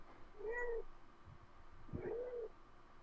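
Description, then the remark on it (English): A cat meows twice, two short, rising-and-falling calls separated by about a second, soft, with a faint low rumble in the background and no talking. “Hello, kitty.”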